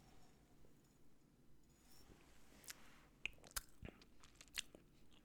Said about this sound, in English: Let's take another sip of whiskey here.